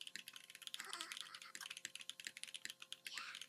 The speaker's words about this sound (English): Typing ASMR? I hate it.